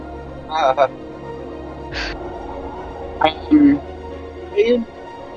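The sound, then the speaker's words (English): A voice imitates a big bird flying around the speaker at a cliff: four or five short, harsh squawks at uneven intervals, moderately loud over a low background hum. “This is a bird flying around me.”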